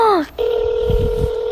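Phone dialing tones as a call is placed to a woman's husband: a short falling electronic beep, then a steady, clear tone that holds to the end, with a few faint low thumps underneath.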